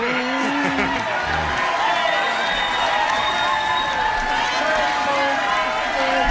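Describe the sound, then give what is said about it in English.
A large standing crowd at the governor's speech in West Palm roars and chants "Let's go, Brandon," with a steady wash of cheering and clapping filling the whole clip at a loud, constant level. “They're standing and chanting and clapping.”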